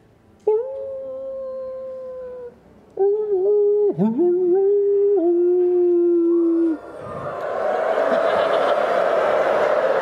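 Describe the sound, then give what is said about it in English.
Voices imitate a pack of wolves howling: two long, wavering howls in close succession, loud, then a swelling wash of noise builds steadily to the end. “That's a lot of wolves, you guys. 2,000 wolves.”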